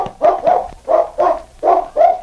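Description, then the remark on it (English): A dog barks six times in quick pairs, each bark sharp and full-throated, signalling it has found a scent after sniffing the ground near the back door of a cafe. It sounds loud, with no voices and little background noise. “The intelligent dog stood for a moment, and then, sniffing the ground near the back door of the cafe, he stopped and barked to indicate he had found the scent.”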